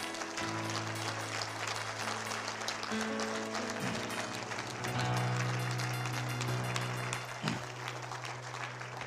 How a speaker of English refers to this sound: Give God a hand clap.